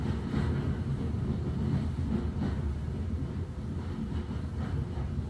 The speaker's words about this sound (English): the sound changes. No echo of the steel wheels on the track. The puffs and chugs of the steam engine quieten.